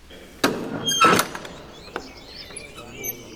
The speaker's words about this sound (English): Eventually, the door creaks open, and they return to the brightness of the open churchyard.